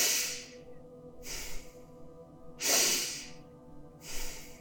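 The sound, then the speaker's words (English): Forceful, deep breaths through the nose repeat in a steady rhythm during a guided breathing exercise, four airy rushes, each inhale and exhale hissing loudly with no pause between them. “Breathing in deeply and with force through your nose.”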